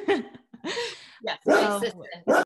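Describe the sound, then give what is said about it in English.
A dog gives a few short barks and yelps in quick, uneven bursts, with brief pauses between them and no one talking. “Oh, I have dogs too.”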